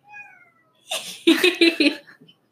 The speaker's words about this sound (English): Hey, Carly. That's my cat. Aw, she's smiling at the microphone. Hey, Carly. We're staring at her, like, in silence. Come here. Meowing.